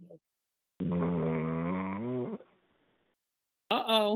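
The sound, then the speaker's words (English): A person snores loudly with a buzzing, throaty drone lasting about a second and a half, then after a short pause a second snore begins. “You were snoring, baby.”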